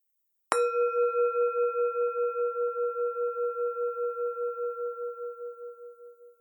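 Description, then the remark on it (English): A single meditation bell is struck once to mark the start of meditation practice, ringing with a clear mid-pitched tone and shimmering overtones that waver gently as it slowly fades over several seconds, with no voices. “We'll put in a little bell sound or kind of delineator so that people know this is practice time and you can lead us in that.”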